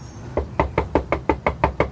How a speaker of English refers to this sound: After a few knocks, the door opens.